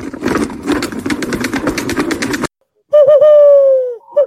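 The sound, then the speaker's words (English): A rapid rattling drum-roll-like clatter stops abruptly; after a brief silence comes a loud, sustained owl-style hoot, apparently a human voice imitating an owl, sliding slightly downward before a short final note. “You were interrupted by an actual owl there.”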